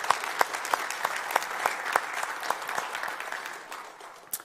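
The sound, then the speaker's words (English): A church audience breaks into a round of applause for God, dense steady clapping with sharper individual claps standing out, holding at an even level for several seconds before tapering off. “So I just thought we could give God a round of applause for what he did this weekend.”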